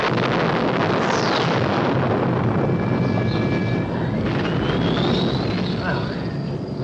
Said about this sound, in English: heads back into the garage to press a button and then comes rushing back out, and a few moments later, there's an explosion inside the garage.